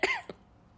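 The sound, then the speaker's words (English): Two quick, forced coughs from a person: a harsher first cough followed by a shorter second one, then quiet. The coughs are deliberately faked rather than genuine. “Yeah, those were fake coughs.”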